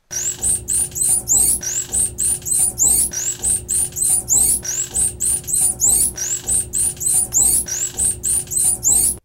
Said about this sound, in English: So, and they name themselves through a specific whistle. So each dolphin has a specific whistle as a name. That, of course, is Freddy the dolphin.